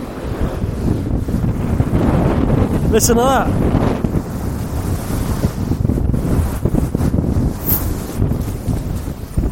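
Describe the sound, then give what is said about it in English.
Ocean waves roar steadily and crash loudly against the shore, with wind buffeting the microphone throughout; a person speaks briefly over the surf partway through. “I'm gonna try and get closer so they can get a noise of these waves.”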